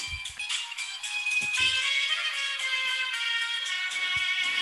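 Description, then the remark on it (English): A bright electronic phone ringtone melody plays continuously, with sustained tonal notes ringing out loud, and a few brief low thumps underneath; no one speaks. “is that your ringtone?”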